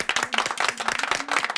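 A short burst of applause from a small group for new brothers and sisters, dense overlapping claps at a steady, lively pace with bright, sharp hand strikes and no talking.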